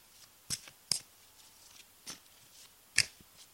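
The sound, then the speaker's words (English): A tarot deck being shuffled before three cards are pulled, heard as a few crisp papery snaps and flicks at irregular intervals, fairly quiet, with no one talking. “Shuffle, shuffle, shuffle.”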